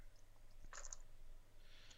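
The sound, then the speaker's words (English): Dice clatter briefly on a hard surface, a quick cluster of small, sharp clicks and rattles that fades fast. It's faint, with no one speaking. “I mean, it's the same amount of dice, so just make it.”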